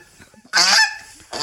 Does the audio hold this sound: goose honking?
yes